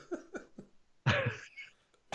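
Two short throaty sounds lead into one loud, harsh cough burst that fades out, with a faint click at the end. No talking.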